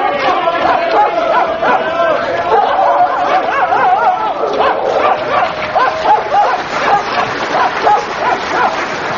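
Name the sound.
dogs barking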